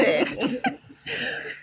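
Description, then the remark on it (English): A few harsh coughs in quick succession, loud and raspy, followed by a brief pause and a rougher, drawn-out throaty hack at the end. “Look, we just having a little cough going on.”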